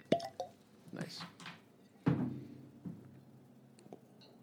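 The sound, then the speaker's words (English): Clear, unaged 90-proof white whiskey is poured into glasses in short splashy bursts, with small drips and plops and a few light knocks of glass, with faint voices murmuring in the background. “Let's try some out. Let's pour us some.”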